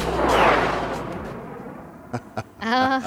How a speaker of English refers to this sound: I like the jet sounds.